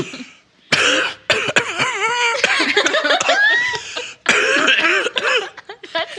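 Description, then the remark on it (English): Several loud coughs into a microphone, coming in rough bursts over a few seconds, mixed with strained, voiced laughter-like sounds between them. “Cough into the mic, it'll add to it.”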